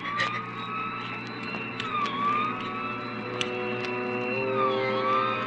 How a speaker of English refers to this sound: We both heard the siren then.